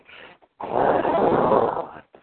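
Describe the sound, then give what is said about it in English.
A man growls like an animal, a low, rough, sustained snarl lasting about a second and a half, fairly loud, preceded by a brief breathy rumble. “Girl, you make me growl and moan when you leave me alone.”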